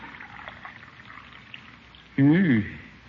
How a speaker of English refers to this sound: Let me pour your coffee